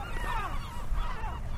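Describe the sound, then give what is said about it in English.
Great black-backed gulls and herring gulls calling in overlapping, nasal cries, a loud chorus with several birds at once from a dense nesting colony, over a steady low rumble of wind or surf. “You're hearing great blackback gulls and herring gulls.”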